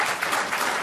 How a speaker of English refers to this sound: Somebody clap their hands, would you?